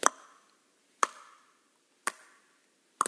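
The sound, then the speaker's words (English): A metronome, used in EEG studies of people doing meditation, clicks four times at a steady one-per-second pace, each tick a sharp, bright click with a brief ringing tail, and nothing else sounding between the beats. “They would have people hooked up to EEGs and an EEG, and they would basically have a metronome that's just ticking, like every second.”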